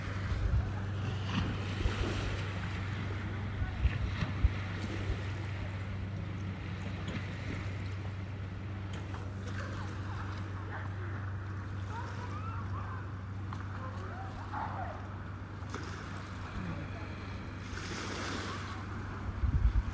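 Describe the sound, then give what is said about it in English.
Lake waves slap and wash against a boat hull over to the left in steady, irregular bursts, with a low engine-like hum and wind buffeting the microphone throughout. “You hear the waves slamming over to the left.”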